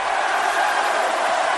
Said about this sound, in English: There goes that chant again. Listen to the crowd at America West Arena.